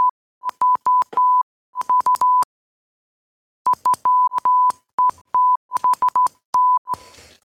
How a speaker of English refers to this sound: Say something in Morse code right now and then I'll translate it later.